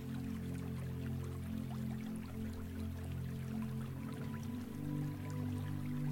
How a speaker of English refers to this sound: You take a little while to listen to the soft sounds of the waves breaking on the shore.